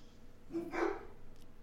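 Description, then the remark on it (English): A dog gives a quick pair of barks run together in one short burst, not very loud, with quiet background before and after and no one talking. “Oh, now we got dogs.”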